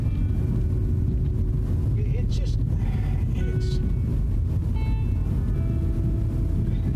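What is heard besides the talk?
car interior road rumble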